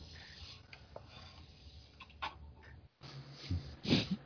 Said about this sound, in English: Snoring.